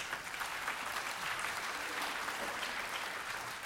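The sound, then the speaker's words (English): A crowd applauds steadily, a dense wash of many hands clapping at once, sustained at an even level for a few seconds with no voices standing out. “Clap for Paul here.”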